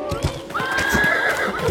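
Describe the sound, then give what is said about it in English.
A horse lets out a loud, shrill whinny that rises and wavers, while hooves clop rhythmically underneath, steady throughout. “Was that your other horse?”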